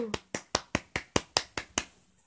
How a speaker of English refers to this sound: So, yeah. Round of applause to me. Woo!